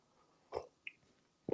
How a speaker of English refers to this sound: Ooh, wow. Let me have a sip of coffee on that one. Hope you all brought your coffee this morning.